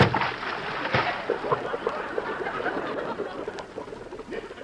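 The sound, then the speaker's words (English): A loud splash as someone dives into a swimming pool from its edge, followed by several seconds of churning, sloshing water, with no voices. “No, I'll dive in. Here I go. One, two, whee!”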